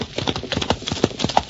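Horse hooves pound in a quick, steady galloping rhythm, each beat sharp, with a faint higher ring on a couple of strikes; no voices.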